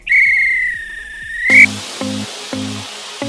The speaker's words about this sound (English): If this were a real bit of extra time, this is when the ref blow the whistle, because it's finished.